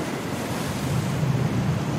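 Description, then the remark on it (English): Heavy surf roars continuously, a dense low rumble of massive crashing ocean waves with gusty wind noise over the top, loud, with no voices. “The only thing that even remains of that boat now is just a few pieces of wood being thrown around by the massive crashing waves, and the body, which is now slowly being pushed further and further away from your boat.”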